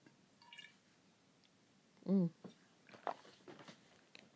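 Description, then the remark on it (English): Quiet mouth sounds of someone sipping water and chewing a blueberry that was in the water, with soft wet squishes and a brief hummed vocal noise in the middle. “Sorry, there was a blueberry in that water that I forgot that there was a blueberry in there.”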